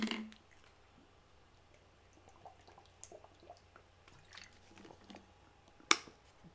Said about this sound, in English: I need to drink some water.